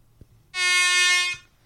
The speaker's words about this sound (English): God, sounds like not a much train. Of an air horn, is it? It's just what it says there, look. Air horn. Air horn.